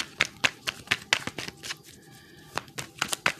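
A thick deck of cards being shuffled, with crisp papery slaps in a quick, steady rhythm, a short pause partway through, then several more snaps. No one speaks.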